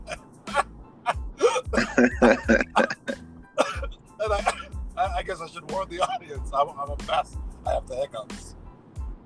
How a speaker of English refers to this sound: I guess I should warn the audience. I'm a mess. I have the hiccups.